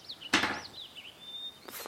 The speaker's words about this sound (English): Everything's a d20. So you grab the 20-sided dice, give it a roll.